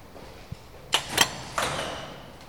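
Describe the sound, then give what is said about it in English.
Heavy airlock doors opening into the first cavern of a large building: a small knock, then two loud mechanical clunks followed by a third that releases a rushing hiss of air, slowly fading out. No voices. “As the doors open, we refer to this kind of as the Indiana Jones moment.”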